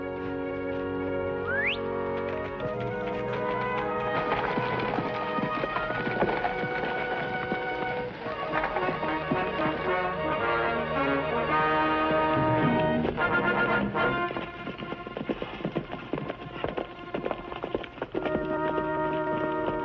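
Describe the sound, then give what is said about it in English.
Horse hooves clip-clop in a steady, trotting rhythm beneath loud orchestral music, the hoofbeats partly masked, with no one speaking. “I had to get these horses out of sight.”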